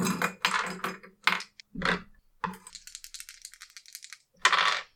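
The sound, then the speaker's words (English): Dice rattle in a cup with several sharp shakes, then tumble across a hard surface in a quick clatter of small clicks before one more loud shake. No one speaks. “What are those dice? I think those are both my second best dice, yes.”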